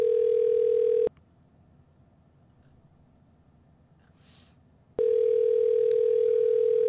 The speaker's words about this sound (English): And it might just basically be an entire show of the phone ringing. And the only guy who answered was the guy from that motel.